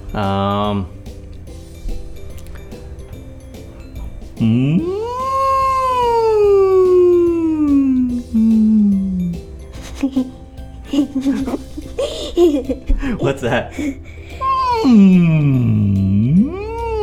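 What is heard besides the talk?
whale call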